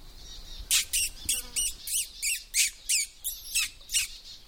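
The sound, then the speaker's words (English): A rapid series of about ten sharp, high squeaky notes, evenly spaced, made by a person to attract little birds in, with a faint outdoor hush between them. “It's often a good way of attracting little birds in, just these squeaky note noises.”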